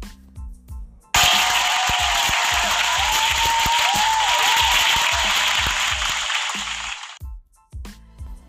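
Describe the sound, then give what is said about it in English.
A burst of loud, dense applause, like a crowd clapping hard, lasts about six seconds before cutting off, with someone talking briefly before and after it. The applause is for gymnast Simone Biles. “If y'all don't give that baby a round of a fucking applause, like Simone, though.”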